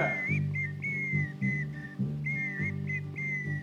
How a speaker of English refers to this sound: I love this music, bro. Is those the wild hyena dogs are coming? Yeah. Is that whistle?